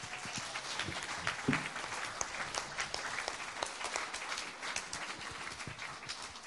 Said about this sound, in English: If you're not standing up, give these guys a round of applause.